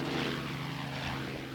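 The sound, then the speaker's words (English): A police helicopter drones steadily, its engine and rotors making a loud, continuous low hum with layered tonal harmonics and a breathy wash above, unbroken for the whole short stretch, no voices. “They also do that ghetto bird? That's a ghetto bird.”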